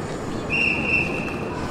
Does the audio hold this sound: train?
yes